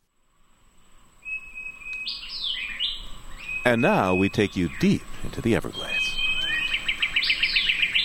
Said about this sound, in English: Lang Elliott and Ted Mack recorded this dawn chorus of birds, insects, and amphibians at Florida's Big Cypress Preserve.